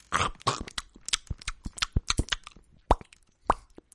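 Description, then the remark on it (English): A mouth imitates gum chewing with no actual gum, simulating a gum-chewing ASMR video: a quick, irregular run of wet smacks and sharp pops, fairly loud, with no talking over them. “I have occasionally seen people post gum chewing ASMR videos.”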